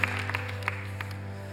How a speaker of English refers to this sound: And can we just give a round of applause for those that did that? Because that's awesome. It really is. It's something special.